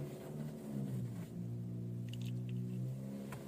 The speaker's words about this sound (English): Oh, a silver pickup truck. Just once I said I'll call him, lah. Then a silver pickup truck is parked right behind me. Let's see who gets out.